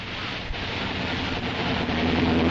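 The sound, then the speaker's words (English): A car engine hums steadily with a low rumble and broad noisy hiss, its pitch rising slightly toward the end as the car moves off and is pulled a bit off the road to park. No one speaks. “Have to pull the car a bit off the road, though.”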